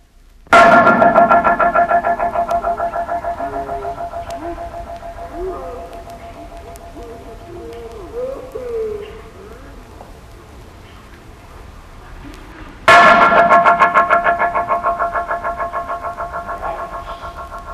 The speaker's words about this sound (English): we mentioned one interesting acoustic artifact, the parabolic bridge, which sends a sound echoing up to 50 times. Let's slow down some of those echoes so you can hear them clearly.